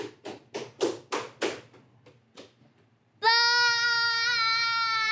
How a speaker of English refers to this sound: Why do you slap your feet like that on the floor? Why don't you walk normal? Look, walk normal. Go. Don't walk without slapping your feet.